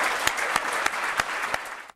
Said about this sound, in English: So to thank them for their work and to thoroughly usher the summer in, let's have a final round of applause for it.